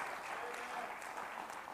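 A crowd claps hands before the Lord at a preacher's call, a steady, dense wash of applause that holds at an even level throughout, with no individual claps standing out and no one speaking over it.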